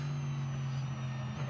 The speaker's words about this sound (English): You just hear how much they're off the throttle, rolling the car through the corner rather than loading the tyre.